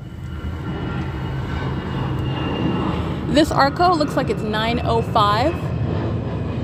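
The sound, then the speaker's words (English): A steady, loud low rumble of an airplane passing overhead at 3:38 p.m. fills the whole recording, with a person talking over the engine drone in the second half. “This is ongoing plane activity.”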